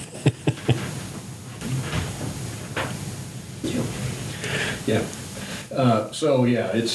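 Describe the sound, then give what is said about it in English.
A door is pushed shut with a few quick knocks and a muffled thud amid a steady background murmur, with someone speaking briefly near the end. “Can I get you to push that door closed?”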